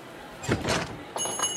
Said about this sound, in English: Just then the front door opened. A middle-aged woman walked in with bags of groceries hanging from her arms.